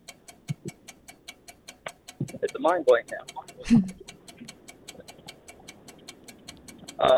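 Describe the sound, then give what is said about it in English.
A game countdown clock ticks steadily throughout a timed word round (six summer words beginning with S), sharp, even clicks a few per second, while people talk and laugh over it in brief bursts. “Let's beat the clock.”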